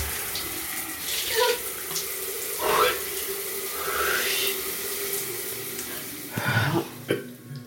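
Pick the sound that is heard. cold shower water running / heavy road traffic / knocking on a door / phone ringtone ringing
cold shower water running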